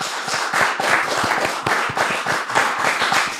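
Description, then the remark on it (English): A group of people clapping steadily to welcome comedian Chris Spencer, with many overlapping sharp hand claps forming a dense, fairly loud patter of applause that holds at an even level throughout. “Glad to be here, that's your clap to welcome to the first tee, Chris.”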